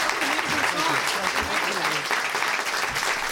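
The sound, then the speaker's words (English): Steady, dense audience applause at the end of a show after a song, filling the whole stretch, a continuous crackle of many hands clapping at an even loudness, with faint voices murmuring underneath. “Keep applauding.”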